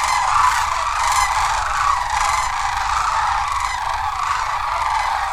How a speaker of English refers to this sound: This is the sandhill crane. And this particular recording was done at the Denali National Park and Preserve in Alaska.